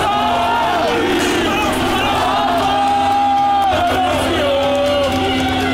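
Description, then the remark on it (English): A dense crowd of yellow vest protesters in France shouts and chants in protest against the government, many voices overlapping into a loud, continuous roar with rising yells and calls, no pauses across the stretch. “The so-called yellow vest protesters in France have vowed to keep fighting the government.”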